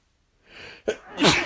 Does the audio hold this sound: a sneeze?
yes